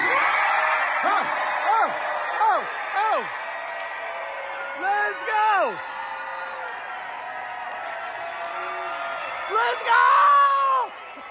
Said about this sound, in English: And in case you're wondering if we're having a good time on the road, well, take a listen to the crowds from a few of the most recent cities we performed. Bartlett, Tennessee.